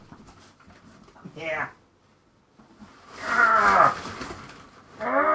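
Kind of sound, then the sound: animal, cat vocalizing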